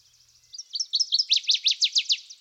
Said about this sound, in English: Its song is a sudden burst, beginning with 3 or 4 clear round notes, much resembling certain tones of the clarinet, and terminating in a rapid, intricate warble.